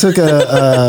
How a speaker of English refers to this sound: I took an immune booster, and now I'm... I gave him an immunity shot. Burping citrusy awfulness.